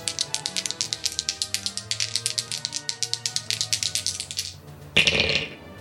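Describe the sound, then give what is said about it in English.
Dice are rolled to draw a giveaway winner, rattling in rapid, steady clicks for several seconds, then landing with a short, louder clatter at the end. Clear, with no voices. “Dice roll, please.”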